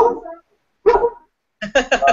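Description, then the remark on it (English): A dog barks loudly in short bursts: a single bark, a pause, another, then a quick flurry of several barks in a row. “Dog.”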